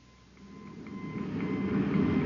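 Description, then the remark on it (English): Crackly radio static with a thin steady whine running through it, a rumbling, hissing wash that swells gradually louder over a couple of seconds, with no voices. “The interference is gone, sir, and I've got a fix on the signal.”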